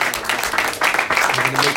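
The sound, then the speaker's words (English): A crowd breaks into steady, dense clapping for someone's haircut that fills the whole moment, with a few voices murmuring and calling out underneath the applause. “Give a round of applause for his haircut.”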